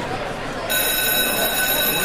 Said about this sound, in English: Because I can hear that bell a-ringing